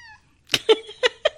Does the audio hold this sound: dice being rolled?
no